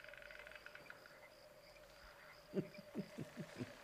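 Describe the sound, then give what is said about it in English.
A voice imitates frog croaks: five or so low, throaty croaks in a quick, uneven rhythm, over a steady background of chirping insects after a quiet start. “There are samples of frogs.”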